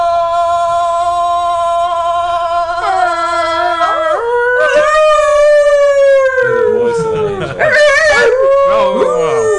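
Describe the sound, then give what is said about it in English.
A dog howls in long, loud, continuous wails, its pitch sliding and wavering up and down for about ten seconds, with no talking over it. “I had my predictions as to who might start howling in the middle of the show, and I got it wrong.”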